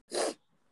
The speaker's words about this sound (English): I feel like I have allergies because whenever I'm in this house, I'm always sneezing and have a cold. And it's not like a winter cold, it's literally like I just keep sneezing, just like I've got something in my nose.